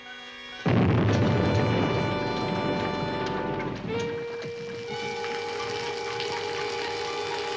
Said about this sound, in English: Yeah, the bomb we placed in the water pipes ought to go off right.